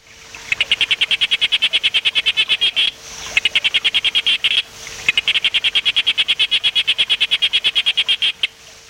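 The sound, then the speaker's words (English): A sharp-snouted day frog, a species from Queensland in northeast Australia, calls in rapid, evenly spaced pulsing trains, three long bursts of sharp clicks separated by brief pauses, loud with no one speaking. “This is the sharp-snouted day frog.”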